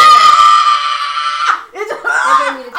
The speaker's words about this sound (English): I screamed.